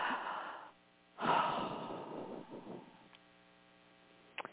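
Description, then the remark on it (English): A deep breath: a breathy rush fades, then after a pause a louder, longer exhale trails off, all over a steady electrical hum, with a couple of small clicks at the end. “let's all just take a great big deep breath.”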